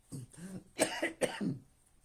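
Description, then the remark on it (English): Two sharp coughs in quick succession, preceded by a soft throaty hum and trailing off into a brief rasp. “Excuse me, even if you're fighting off a cough still occasionally, no matter what else is going on in your life, you've been chosen.”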